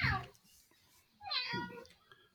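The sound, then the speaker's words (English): Two high, drawn-out meows, a child's voice imitating a cat, the first short and the second longer with a wavering, sliding pitch. “I got a child over here acting like a cat.”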